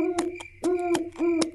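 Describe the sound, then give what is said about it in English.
An owl named Hedwig, pulling a carriage, hoots three times in a steady rhythm, each call a clear tonal note with sharp clicking edges, heard alone with no voices. “And you have a very nice owl.”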